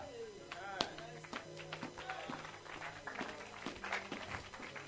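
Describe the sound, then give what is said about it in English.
Scattered hand claps, sharp and irregular, about eight or nine snaps over a few seconds, mixed in with people talking underneath. “Are you clapping?”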